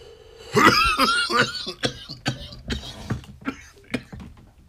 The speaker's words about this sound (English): Let's take one big last hit before we get out of here. Ooh, I ghosted that shit, man. Oh my god, I'm about to cough right now. Should we get out of here before I start coughing?